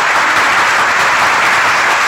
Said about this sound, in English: Let me give them a roaring round of applause down there, ladies and gentlemen.